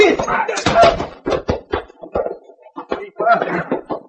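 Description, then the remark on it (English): A scuffling fistfight: several heavy thuds and punches land in quick, uneven succession, ending with a dull thump as a man is knocked to the floor, with grunting voices mixed in. “Come on, take back what you said or get up. I knock you down again.”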